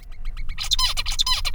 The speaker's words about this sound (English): He's the bird with the less preferred song because it's a lot less complex than Mr. Wright's.